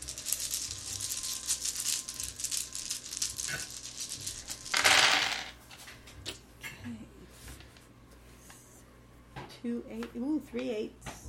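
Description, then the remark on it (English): A big handful of sixteen dice, rolled for weapon damage, clatters and rattles across a table in a dense burst, then a few scattered clicks settle out before a voice speaks briefly at the end. “He's going to be rolling weapon plus 5. Plus 5, you're right. So 16 dice, yes.”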